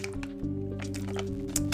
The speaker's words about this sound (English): Now let me take a drink real quick.